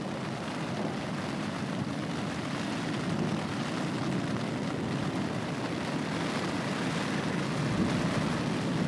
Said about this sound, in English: This is a really intense storm. This is really intense. Marfa, Texas.